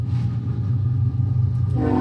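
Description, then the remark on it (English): A loud train rumbles past, a deep steady roar with rattling wheels, and a brighter tonal sound like a horn or brake squeal rises near the end. “I love the train noise.”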